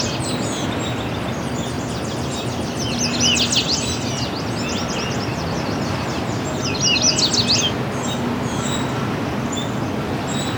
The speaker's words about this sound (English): Yellow warbler.